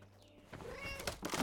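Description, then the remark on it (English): A cat meows a couple of times in quick succession, a drawn-out, fairly loud cry, with a faint low hum underneath, as cats are let out of a cage. “Cats out of the cage!”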